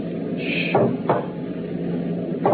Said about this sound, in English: Shh. It's at the door. Yes, ready. It's opening the lock.